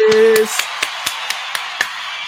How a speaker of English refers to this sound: Go ahead and keep the round of applause going for DC Financial Services.